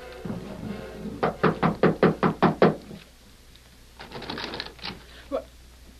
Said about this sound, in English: They walked up the steps to the porch and knocked on the door.